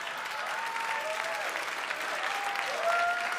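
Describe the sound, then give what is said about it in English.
A crowd claps steadily and loudly throughout, with several rising whoops and cheers cutting through the applause. “judging by your applause and your weird Arsenio Hall whoop that you just did”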